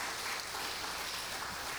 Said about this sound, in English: And y'all blessed our hearts. I think y'all need to applaud your choir because they did a great job. Amen. Amen.